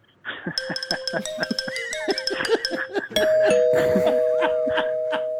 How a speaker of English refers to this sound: I have a xylophone doorbell.